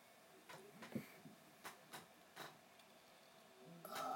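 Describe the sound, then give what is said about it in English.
The speaker's own chair, which he sits in at his computer, creaks quietly in a handful of short, scratchy groans spread irregularly across a few seconds, ending in a slightly longer, louder creak, with no voices. “And sorry for that creaking in the background.”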